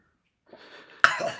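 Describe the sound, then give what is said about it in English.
A raspy, breathy wheeze builds for a moment, then breaks into a loud, harsh cough that keeps rasping on, like the start of a coughing fit. No one speaks. “You okay there, bud? I almost died”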